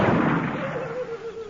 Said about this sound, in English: He's shooting back.